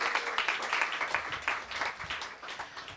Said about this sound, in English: Now you can give them all a round of applause.